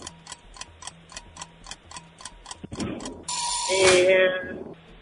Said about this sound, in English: That's the timer.